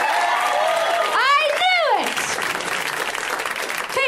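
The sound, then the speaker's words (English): An audience at a comedy show claps again for the first comic, a dense, continuous wash of applause with a couple of rising-and-falling whoops cutting through the middle before the clapping carries on at an even level. “And this first comic is, oh, we should clap again.”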